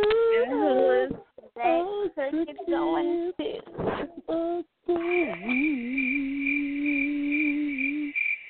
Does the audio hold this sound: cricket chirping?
yes